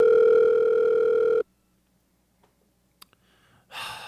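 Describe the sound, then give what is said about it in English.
A loud, steady telephone dial tone hums for about a second and a half while the caller waits on hold, then cuts off abruptly into near silence, broken by a couple of faint clicks and a breathy exhale. “Answer the phone.”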